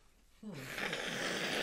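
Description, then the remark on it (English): A woman blows her nose: a sudden, loud, breathy rush of air that starts with a short low honk and carries on as steady noisy blowing for over a second, with no talking. “She's blowing her nose.”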